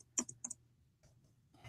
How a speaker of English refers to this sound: I'm going to have to get faster at typing.